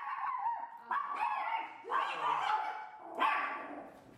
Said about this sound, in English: The dog. Those are the two dogs.